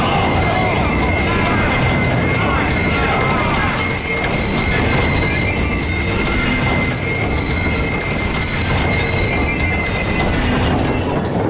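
Train wheels screech against the rails in a sustained, high-pitched metallic squeal, riding over a steady low rumble of rolling railcars, loud throughout.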